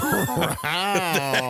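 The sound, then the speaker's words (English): A man's voice imitates a dog with a few short, gruff, bark-like yelps followed by a drawn-out, strained howl, loud. “You hear he sound like a dog when he said that.”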